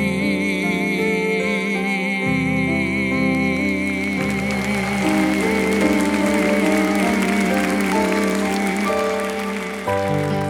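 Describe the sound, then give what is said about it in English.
An audience claps steadily for Jesus, a dense, continuous wash of applause lasting the whole stretch, blended with sustained keyboard chords and held musical tones underneath. “That clap was for Jesus.”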